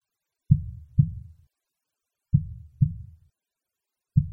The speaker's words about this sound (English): But for many minutes, the heart beat on with a muffled sound. This, however, did not vex me.